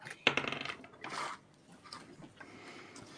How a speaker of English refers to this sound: Okay, I've got rolling a couple of dice here.